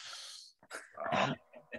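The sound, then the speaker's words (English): A voice imitates a sharp, pained intake of breath, as when clipping a knee on the corner of a table: a long hissing inhale, then a few strained, whimpering vocal bursts, fairly loud with no other sound around it. “it was one of those things for me, like, you know, when you stand on a plug or when you walk past the table and you accidentally clip your knee on the corner and you breathe in for about 20 minutes whilst going.”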